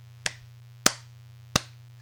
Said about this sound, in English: Hey, don't interrupt my slow clap.